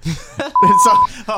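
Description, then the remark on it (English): A loud, steady censor bleep, a single flat tone lasting about half a second, cuts into a man's speech, with talking just before and right after it. “No, beep.”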